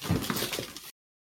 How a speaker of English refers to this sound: They are at the bottom of my giant stack of comics, so I'm going to knock everything over.